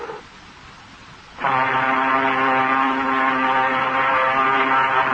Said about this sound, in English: Then, through slashing sleet, comes the warm, welcome sound of a pilot boat.